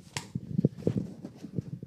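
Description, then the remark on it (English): A dog gnaws on its owner's everyday boot: one sharp click followed by a string of soft, irregular chewing thuds and squeaks, fairly quiet, with no voices. “Don't chew on my shoe.”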